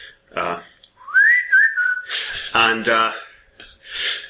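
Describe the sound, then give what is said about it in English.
A phone's whistle notification tone: one clear, high whistle that slides upward and then holds, lasting about a second, with brief voiced sounds and breaths before and after. “I've changed that on my phone, so it doesn't do that anymore. It is extra embarrassing when it goes off in class.”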